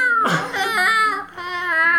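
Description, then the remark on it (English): A voice mimics feral cats with two drawn-out, whiny yowls, the first rising sharply then wavering, a brief dip, then a second sustained wail. It is fairly loud and has no other talk. “Just the sound of feral cats, like...”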